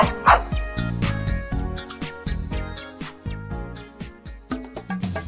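A dog barks in short, sharp yaps set against an upbeat musical backing, the barks landing in quick bursts that blend with the rhythm of the tune.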